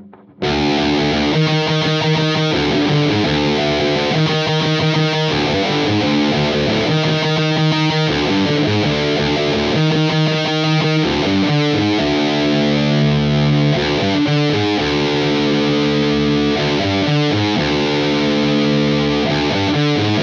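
A heavily distorted bass riff, the opening riff of a song, is played slowly as single notes in a repeating, chugging pattern, loud throughout, with no talking over it.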